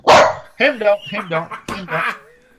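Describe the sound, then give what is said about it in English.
A dog barks and yowls in reaction to someone saying the word "horse": a sharp opening bark followed by a run of loud, howling, whine-edged vocalizations in three bursts over a couple of seconds. “He got kicked by a horse when he was a puppy.”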